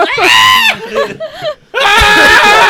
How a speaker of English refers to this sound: You just have to, like, turn the volume down really, really low, but it's definitely people just screaming in the background.